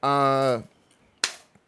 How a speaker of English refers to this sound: First of all, wait, man. I just saw you clapping, so I'm going to clap.